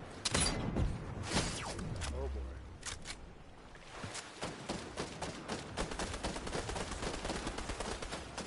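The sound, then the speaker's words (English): Video game gunfire: sharp, crackling shots in irregular bursts early on, then a dense, rapid stream of automatic fire through the second half, loud and steady. “Who are we getting shot at? I don't know, but they're shooting.”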